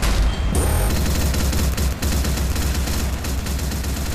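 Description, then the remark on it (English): Cannons are test-fired at a moving target in a loud, rapid, continuous barrage, heavy booms overlapping with a dense rumbling roar for several seconds, with no voices. “Test the cannons on that moving target.”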